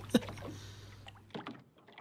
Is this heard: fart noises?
no